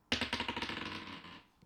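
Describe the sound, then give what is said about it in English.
Dice are rolled again after being knocked, clattering across a hard tabletop in a quick burst of rapid clicks that gradually slow and fade within about a second, with no talking over it. “I need to roll again because I knocked it.”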